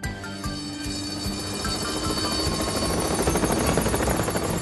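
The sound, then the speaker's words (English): Harold the helicopter's rotor thumps rapidly and steadily, growing louder and denser as it approaches before landing on a road, with a whining engine tone over the throbbing beat and no voices. “It wasn't long before the Duke and Duchess heard the sound of Harold the helicopter.”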